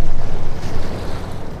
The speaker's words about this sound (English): And then the first view of my destination, Aberdeen, and the quiet hum of the harbor that has played host to more than one boom and one bust over the centuries.